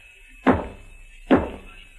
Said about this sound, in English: You crazy. What are you banging on the wall for?